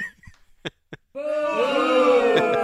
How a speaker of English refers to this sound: That effort got booed. So your official team of Around the NFL 2016 is the Minnesota Vikings.